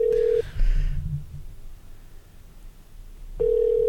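signal or alarm, outgoing phone call ringing

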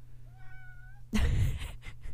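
animal, cat meowing

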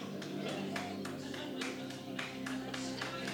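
crowd, audience member clapping

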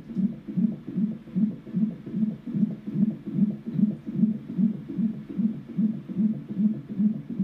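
medical sound, heartbeat

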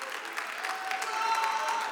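crowd, audience clapping and cheering

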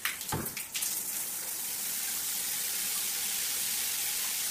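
household object, shower water running

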